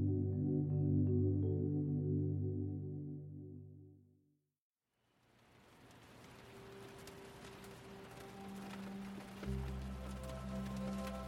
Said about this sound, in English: You wake up to the gentle tapping of rain against your window. From your large four-poster bed, you roll over and see it falling outside on the lush gardens around your guest house.